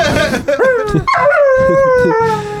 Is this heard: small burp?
no